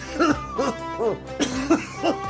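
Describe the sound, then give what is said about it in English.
A series of five or six harsh, hacking coughs in a steady rhythm, fairly loud, each burst short and raspy with brief pauses between them. “what the hell is that cough?”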